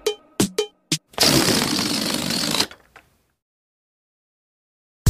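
A few short rubbery squeaks, then a blown-up balloon that has been let go loudly sputters and rushes air as it flies around the room for about a second and a half, a fluttering, flapping hiss that stops abruptly into silence.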